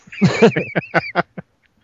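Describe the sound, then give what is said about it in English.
A duck quacks in a quick, loud burst of about six nasal calls: a longer raspy opening quack, then shorter ones that taper off, with no other sound around them. “Duck.”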